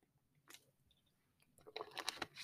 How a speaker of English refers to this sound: I hope you guys don't mind if I like get sips of water here and there, because the bitch mouth be dry.